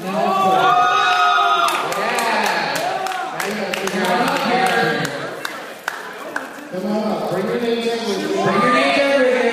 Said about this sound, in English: It's really a talkative crowd tonight. And I don't necessarily mind it. But it's a challenge.